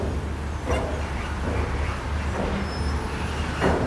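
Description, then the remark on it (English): A steady, heavy rumble of vehicles going past on a road by the Aire de Saint-Florence rest area in the Vendée, France, with a few sharp clunks and thuds rising out of the drone; no one speaks. “I watched the vehicles go by as I ate.”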